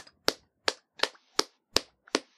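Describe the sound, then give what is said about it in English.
A group of hosts claps together in six sharp, evenly spaced claps at a steady, moderate pace, each a crisp bright smack with a quick decay. No one speaks. “It definitely makes me think that I saw, like, the movie was better when everyone claps. Let's workshop this.”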